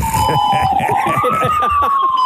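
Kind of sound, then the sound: vehicle, fire truck siren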